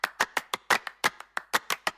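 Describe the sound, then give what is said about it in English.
Two layered hand clap sample loops, found on Splice or a sample drive, play a steady, syncopated pattern of sharp, bright claps, about a dozen hits in two seconds, some doubled closely, with no voices. “It's two clap loops that I just found either on Splice or on my sample drive.”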